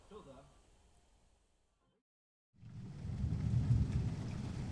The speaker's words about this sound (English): I made my way into work, looking at the rain that began to spatter about the place.